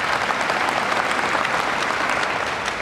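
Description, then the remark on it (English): An audience applauds steadily, a dense wash of many hands clapping at once with no gaps, holding at an even, fairly loud level for a few seconds. “You can retract those applause after I say what I'm about to say.”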